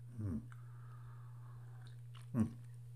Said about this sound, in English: So I hope you're settled in. You have a nice cup of tea or something to sip on. Of course, I always have a cup of tea. Here's mine again.